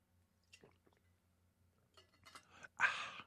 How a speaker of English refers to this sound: I'm trying to get a drink of water.